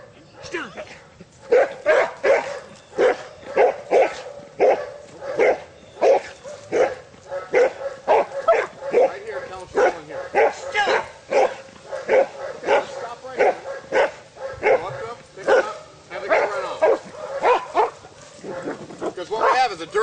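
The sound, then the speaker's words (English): A police dog barks continuously and loudly, a rapid, insistent series of barks with occasional yips, lasting the whole stretch with little pause. “I'll send in my dog.”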